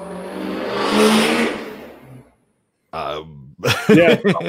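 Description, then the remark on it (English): A loud truck roars down a country road, its rumble swelling to a peak and fading away over about two seconds, followed by a pause and then brief vocal sounds from a person. “I live out in, the country, and somebody just decided to take their loud truck and barrel down the road.”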